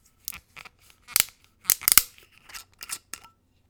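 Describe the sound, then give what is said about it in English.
A glass spirit bottle with a plastic pour splash guard being opened: a quick series of crisp, crackly scrapes and clicks in irregular bursts, like a seal tearing and a cap twisting loose, with no voices. “Let's open this bottle.”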